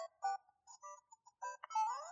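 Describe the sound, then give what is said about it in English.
A tinny electronic melody of quick beeping notes plays part of the Mario theme from a USB-powered Mario clock, with short staccato tones followed by a brief rising flourish, and no voices. “We're getting like some of Mario's theme.”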